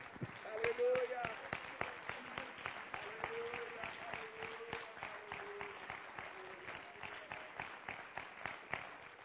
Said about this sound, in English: And as you're seated, would you one more time put your hands together and let's give the Lord a hand clap of praise.